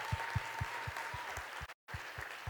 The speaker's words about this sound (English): So can we please give them a round of applause as well? Thank you. Woo!